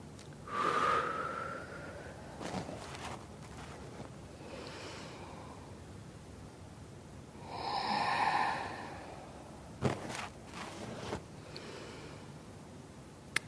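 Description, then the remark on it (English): Deep, audible breaths drawn in and pushed out slowly during a guided spine-stretching exercise, a few long airy inhales and exhales with quiet pauses between them and no talking. “Inhale. Open the front. Exhale. Inhale.”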